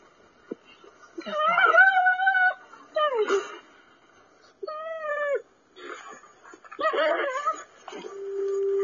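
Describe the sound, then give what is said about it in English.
A dog on a walk bays and howls at an unfamiliar dog passing by, in several drawn-out, wavering bursts with short pauses between them, loud, with no talking over it. “What I'm going to do is that each time he really brays hard, I will either turn around and walk in the other direction, or I'll stop.”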